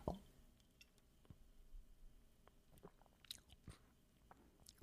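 Someone takes a sip of a bourbon barrel-aged stout, with soft wet mouth clicks, a slurp and swallowing sounds scattered over a few quiet seconds, no talking.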